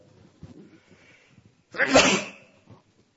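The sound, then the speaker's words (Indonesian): A single loud sneeze bursts out sharply during an Islamic study gathering, after a moment of quiet low murmuring, with a broad noisy blast that fades within about a second. “Alhamdulillah. Yahdikumullah”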